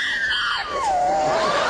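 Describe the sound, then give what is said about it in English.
A dog named Odie lets out a single drawn-out, whining howl that mimics the cadence of "I love you," its pitch starting high, sliding down, then lifting slightly at the end, with no talking over it. “Actually, speaking of together, I do have a dog that says I love you.”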